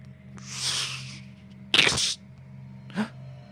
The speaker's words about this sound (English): That sounded like a stick breaking.